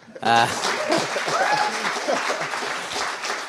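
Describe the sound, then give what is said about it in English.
An audience at a live event in sunny Edinburgh bursts into applause, many hands clapping in a dense, steady wash that starts abruptly and holds loud for several seconds, with a few voices faintly mixed in. “So if you don't mind just clapping your hands together for us.”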